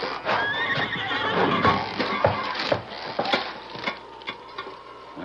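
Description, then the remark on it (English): A horse named Silver whinnies loudly, its neigh rising and wavering over the first couple of seconds, followed by scattered clopping hoofbeats and clattering knocks as it strains, pulling on a tightly tied rope to pull the bars out of a jail. “Quick, to the horses.”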